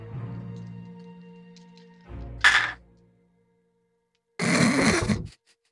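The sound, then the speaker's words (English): Dice rattle and tumble in a dice tray in two separate rolls for a reflex save, a short sharp clatter followed a couple of seconds later by a longer rolling clatter, after a low sustained tonal hum. “Yeah, I'm going to roll twice as well.”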